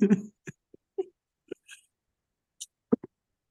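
A coughing fit: a run of short, muffled coughs and strained gasps in irregular bursts, some sharp and breathy, separated by brief silences, with no talking.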